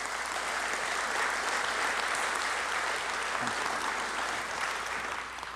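A crowd claps steadily in sustained applause as a speaker comes up, a dense, even wash of hand claps holding at the same loudness throughout without any speech over it.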